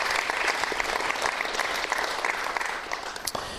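A crowd claps steadily, the applause dense and even throughout, with scattered sharper claps standing out near the end and no voices heard.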